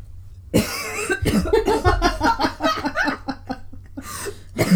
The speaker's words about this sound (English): COVID. I'm not sickened. Well, I am, but that's not the reason why I'm coughing.